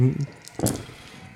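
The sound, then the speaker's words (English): A short, bright clatter of metal dice hitting and rattling across a table, lasting only a moment, preceded by a brief fragment of a voice. “my dice exploded metal again. Metal dice.”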